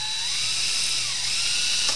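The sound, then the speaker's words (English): A steady high-pitched mechanical whine as a power drill pierces a beer can, running continuously for a couple of seconds with a faint low hum underneath. “Yeah, you crack can with a drill.”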